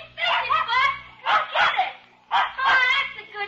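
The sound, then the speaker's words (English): A dog barks and yips excitedly in quick bursts, three clusters of yaps with short pauses between, loud, as it plays with a kid in an empty lot. “There's a kid and a dog playing in that empty lot.”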